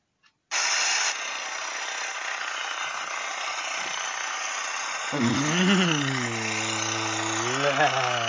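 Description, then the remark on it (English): A loud, steady roar of military helicopter engine noise starts abruptly and holds, then about five seconds in a deep droning hum joins it, wavering up and down in pitch. “The helicopter's here.”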